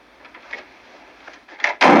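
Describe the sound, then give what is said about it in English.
A woman walking out slams a door shut hard, a loud, sharp bang at the very end, preceded by quieter rattling and shuffling as it swings. No one speaks. “And she walks out and slams his door pretty hard.”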